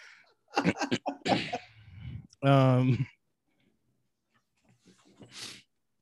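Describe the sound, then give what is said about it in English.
A loud fit of harsh coughing, several rough bursts in quick succession ending in a strained, throaty hack, followed by quieter breathy sounds as it settles. “Dang, I think I invoked something into my throat. Demon come, because I'm coughing like a motherfucker.”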